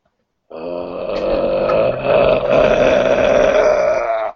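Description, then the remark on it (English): A person voices a long, low, guttural zombie moan that holds steady for about four seconds with a rough, gravelly edge, then cuts off abruptly. No words are spoken. “You who are in the house hear the glass break, and you hear Lizzie scream, and you hear the familiar moan.”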